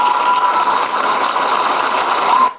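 crowd, round of applause

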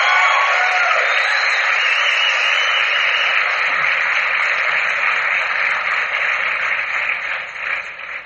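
machine, radio static

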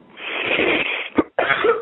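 human body sound, deep cough

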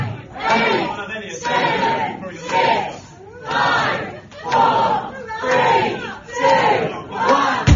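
crowd, crowd cheering

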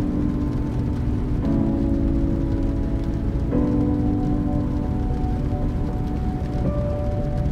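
nature, rain falling

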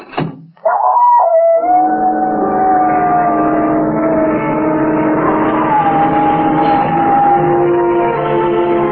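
animal, dog howling

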